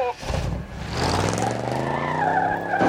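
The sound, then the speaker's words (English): Car tires skid with a rising, strained squeal over a rumbling engine, building steadily loud for about three seconds before a sudden sharp burst at the end like a tire giving out. “Son of a dog! My tire!”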